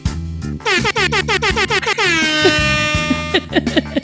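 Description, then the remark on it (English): Loud air horn blasts: a rapid run of short, rhythmic honks, then one long sustained blare, followed by another burst of quick honks. No talking. “Give me my horn.”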